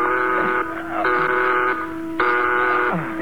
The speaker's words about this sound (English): There's an alarm sounding, sir, all over the ship.